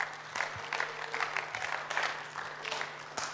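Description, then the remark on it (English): An audience claps in a steady round of applause, a dense patter of many hands lasting a few seconds at moderate loudness, with a low hum underneath and no talking. “Give him a big round of applause, everybody.”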